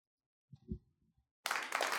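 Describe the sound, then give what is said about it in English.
A few soft, low thumps are followed by an abrupt burst of loud, dense applause that fills the last half second, like a canned crowd clapping sound effect. “I was like, come on, give me the clapping noise.”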